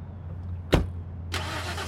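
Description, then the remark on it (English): A car engine starts up: a low steady hum, a sharp mechanical jolt, then a broad roaring surge as the motor catches and runs. No one speaks. “Got in my car.”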